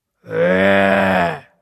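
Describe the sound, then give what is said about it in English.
A voice imitates a growling stomach with a single sustained, low groaning rumble lasting just over a second, loud, with no words spoken. “And they were so hungry, their tummies were growling.”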